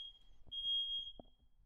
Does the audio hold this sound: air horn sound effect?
no